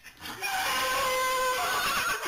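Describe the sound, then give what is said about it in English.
A large horse in a pen in the mountains, used for therapy, lets out one long, loud whinny as it reacts to a person entering, its shrill wavering cry lasting about two seconds over a breathy rasp, with no talking around it. “So I get into the pen with these huge horses, and they start doing their thing. They start reacting to me.”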